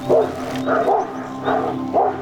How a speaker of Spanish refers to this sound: Destrabó difícilmente los dedos con que su hijo había venido sosteniéndose de su cuello y al quedar libre, oyó como por todas partes ladraban los perros.